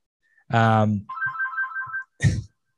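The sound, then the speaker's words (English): A phone ringtone plays: a loud, buzzy tone gives way to about a second of steady, warbling electronic ringing, then a short noisy burst cuts in at the end. “the Shevelden Kemp hotline is exploding out here. Dang.”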